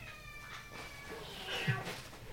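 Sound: cat meowing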